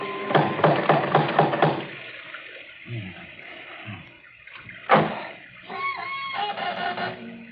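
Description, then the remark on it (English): A quick run of about seven sharp, ringing metallic knocks from a door knocker, evenly spaced and fairly loud, followed by quieter shuffling, a sudden bang, and a high creaking sound. “There might at least be a knocker.”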